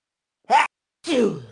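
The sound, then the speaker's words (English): One sneeze: a short sharp intake, a brief pause, then a louder breathy burst that trails off with a falling, partly voiced tail. “Bless you. I held that in so hard because I didn't want to cut you off.”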